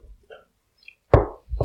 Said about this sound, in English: You're with your big ice cube still? Yes, you can hear it. One ice cube. Nice rattle.